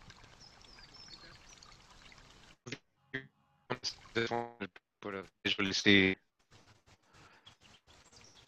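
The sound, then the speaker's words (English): Cool, fresh water from a spring pours and gurgles steadily as girls dip hollowed-out gourds into it and fill them, a soft continuous rush for a couple of seconds, followed by bright voices chattering and calling with faint outdoor ambience. “The girls dip hollowed out gourds into the water and fill them up.”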